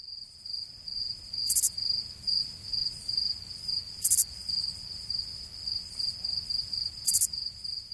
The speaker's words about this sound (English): With silence, actually crickets.